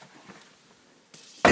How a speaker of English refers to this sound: Oop. Sorry, I keep banging your door into the countertop.